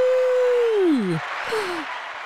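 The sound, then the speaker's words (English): A burst of recorded crowd applause played from a sound-effect button, a dense steady wash of clapping, with a loud whistle that slides downward in pitch and a second shorter falling whistle. “I actually have a button that's applause.”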